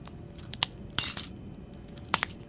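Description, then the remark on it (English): The glass of a chamber housing a mutant parasite cracks after a monster is blown up, with a few sharp, bright clinks, then a brief crackling burst, and two more quick ticks later, all fairly loud over a low, steady background rumble. “Oh, it appears blowing up that monster has left a crack in that glass chamber that currently houses the mutant parasite.”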